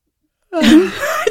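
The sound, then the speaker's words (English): After a moment of silence, a person lets out a single staged yawn, a breathy, drawn-out voiced moan that rises and sags in pitch before trailing off. “I'm going to fake yawn.”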